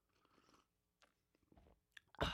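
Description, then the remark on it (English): Someone takes a quiet sip of coffee: soft wet slurping and small mouth clicks, then a sudden louder noisy burst at the end. No one speaks. “Let me take a sip of coffee here and we'll get going.”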